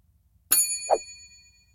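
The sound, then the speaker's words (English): A single bright bell ding strikes sharply and rings out with a shimmering metallic tail for about a second, joined briefly by a lower muffled tone. No one speaks. “Michael's team is always late on the bell because Ben Shapiro's book, The Authoritarian Moment, left them speechless.”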